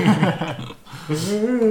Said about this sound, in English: See? Who wants to yawn?